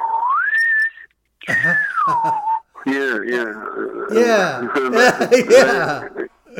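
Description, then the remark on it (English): A person whistles a short melodic phrase, a steady rising note and then a long gliding descent, clear, followed by voices and chuckling. “They had me doing them with whistles first.”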